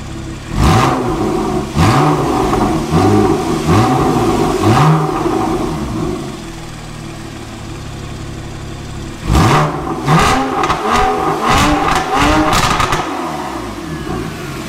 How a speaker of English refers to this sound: Now for the money shot, as it were. Let's listen to the Soul Performance exhaust, but this time with the valves open.